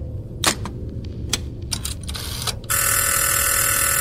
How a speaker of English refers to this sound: the phone begins to ring on your end, and the figure begins to move towards the phone and doesn't really reach to answer it, but more like collides with it.